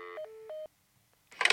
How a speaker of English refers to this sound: Putting the phone down.